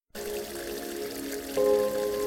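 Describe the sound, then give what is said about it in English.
Spring water pours in a steady stream, gurgling continuously and growing slightly louder and fuller partway through, with no voices present. “I gotta pee. It all looks so refreshing.”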